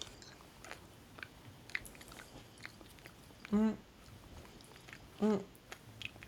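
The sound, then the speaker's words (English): Steady chewing of hot-dog-flavored candy, pink on top and pink-yellow on the bottom, with soft irregular crunches and wet mouth clicks, broken twice by a short hummed vocal sound. “Now, you like hot dogs. I love hot dogs. Will I ever eat hot dogs again after this is the question.”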